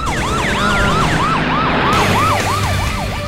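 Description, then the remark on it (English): A wailing police patrol car siren sweeps up and down in fast, repeated cycles, loud over a rumbling vehicle engine as the car comes straight toward the listener, with no voices, filling the whole stretch. “The patrol car. It's coming right at us.”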